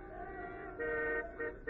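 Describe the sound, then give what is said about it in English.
Car horns honk in stalled traffic over a steady rumble of traffic: one long blast, then two shorter toots, fairly loud, with no voices. “We're stalled right in the middle of traffic.”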